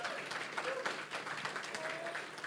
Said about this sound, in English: so as I invite them up, I would encourage us as people, can we just give them a nice round of applause, or at least like a gentle clicking of the fingers as they get up.